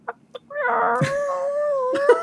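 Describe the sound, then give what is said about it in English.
A person imitates a chicken with one long, drawn-out, wavering squawk. It is fairly loud, preceded by two brief soft clicks. “That's a good chicken impression.”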